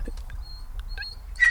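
A Spanish greyhound puppy named Shauna, the dog of the speaker's mom, whimpers faintly in short, thin, high-pitched whines, with a brief louder squeaky whine at the end. No one speaks, and the background stays quiet apart from low rumble.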